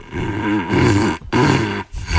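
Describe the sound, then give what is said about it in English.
A Weimaraner dog named Gus blows and growls through a cardboard paper towel tube, making loud, hollow, droning bursts with a wavering rumbling pitch, broken by two brief pauses. No one talks. “This is Gus blowing through a paper towel tube. He loves it.”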